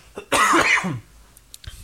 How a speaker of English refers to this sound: Hold on, I have to cough.